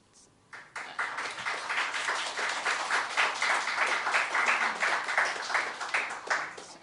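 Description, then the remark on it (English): An audience breaks into steady applause after a brief quiet moment, following a reading of a poem by Catullus, the dense clapping holding at an even, fairly loud level until the end. “And the next ones are kind of short, so you don't need to applaud between them.”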